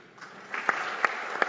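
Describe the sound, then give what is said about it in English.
Audience applause as a panel is introduced, a steady wash of many hands clapping at moderate volume, with a few sharper individual claps standing out at regular intervals. No one speaks. “I'm clapping for you”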